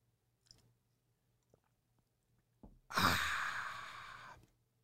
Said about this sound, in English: I'm going to take a sip of my coffee.